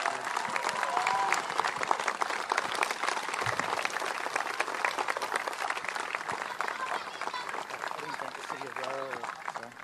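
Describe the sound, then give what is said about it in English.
Sustained applause from an audience for the artist, a dense, steady patter of many hands clapping at an even loudness throughout, with faint voices and a brief whoop or two mixed into the crowd noise. “Let's have a round of applause for our artist”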